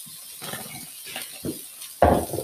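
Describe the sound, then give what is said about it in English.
Sizzling of burger patties frying in a hot pan, four at a time, a steady crackling hiss broken by a few soft thuds and clatters as patties are moved or pressed, with no talking. “Do that sizzle.”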